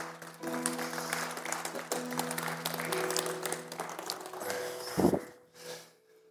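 A crowd applauds steadily for several seconds as a man comes up to tell a short testimony, a dense wash of clapping over a sustained low musical drone, before fading out near the end.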